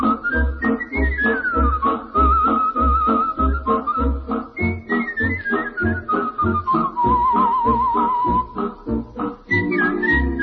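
A skilled whistler carries a smooth, vibrato-laden melody over a steady rhythmic band accompaniment, the whistled line sliding and holding notes clearly above the music throughout.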